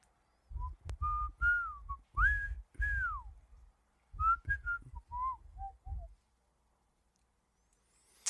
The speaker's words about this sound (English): Oh, sorry. I was whistling.